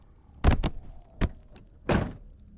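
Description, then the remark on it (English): A heavy truck door slams shut and locks, followed by a few more sharp clunks and thuds at irregular intervals, with no voices, just a faint low hum underneath. “As soon as the weight of his body hit the front seat, the door slammed shut and locked, caging him.”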